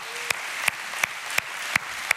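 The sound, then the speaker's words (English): A church audience claps after a call to come to Christ, in a steady rhythm, with six sharp, evenly spaced claps standing out over a continuous wash of scattered applause. No clear cheering voices come through. “Man, hey, they can cheer a lot louder for a soccer game, right?”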